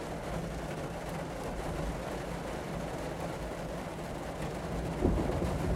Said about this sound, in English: Stuck in my car while it's raining. That's right. Now it's thunder and lightning. So that's good. And the rain's picking up again.